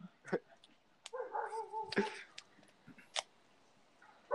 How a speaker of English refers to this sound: Who's dog?